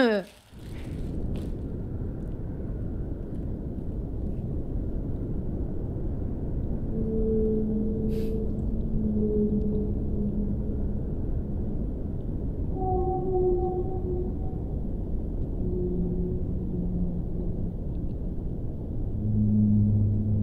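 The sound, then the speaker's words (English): Long, low whale moans drift in and out over a steady deep underwater rumble, several sustained tonal calls overlapping from partway through, mellow. “The last one of the first round is whale sounds.”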